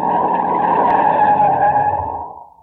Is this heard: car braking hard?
yes